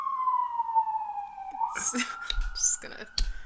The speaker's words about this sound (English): Is this the cold open? Just us listening to the siren?